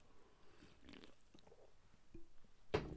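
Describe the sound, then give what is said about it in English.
Someone sips a caffeinated drink from a 12-pack: quiet wet mouth sounds and small slurps, then a short, louder gulp near the end. No one speaks. “It's gonna get me through this podcast. Take another sip.”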